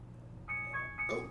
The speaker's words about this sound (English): Oh! And the bell tolls. The saga of the rich phone. Yeah. I have this cheap phone. I turn off every bit of sound, and yet it keeps coming.